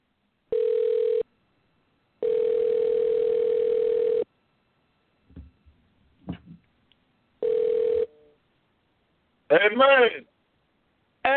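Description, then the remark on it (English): An outgoing phone call rings out with a steady electronic tone in three long bursts separated by pauses and a few faint clicks, then a voice briefly answers near the end. “Let me try calling him.”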